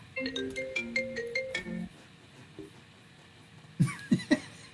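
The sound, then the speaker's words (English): A phone goes off, a short melodic ringtone over a low buzzing rattle as it vibrates against a desk, followed by a pause and then three quick, loud bumps. “I gotta put my phone up on something. So there's a vibrator through the desk.”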